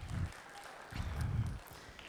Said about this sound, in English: everybody give them a clap. Thank you.